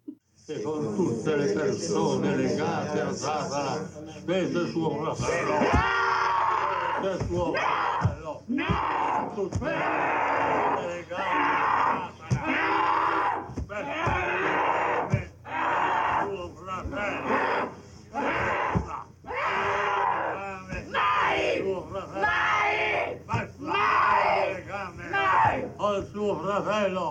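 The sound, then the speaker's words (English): A woman screams and growls loudly and almost nonstop while being restrained, as Father Amort anoints her with holy oil, with guttural snarls, hissing breaths and shrieks, while other voices clamor around her in a tense, chaotic scuffle. “Father Amort also anoints her with holy oil, and she growls some more, and then she starts screaming and acting totes cray and has to be restrained some more.”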